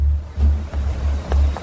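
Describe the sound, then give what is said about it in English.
Heavy low rumble of rough, churning sea water around a sinking ferry that is taking on water, surging in rolling swells with brief splashes, fairly loud, with no voices. “Whoa, the sea's getting rougher.”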